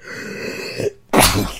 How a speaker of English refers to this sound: … sneezes and just on the wall, like, splatters the Nickelodeon logo.